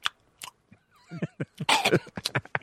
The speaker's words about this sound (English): Okay, so he choked on something. He's a little choking there.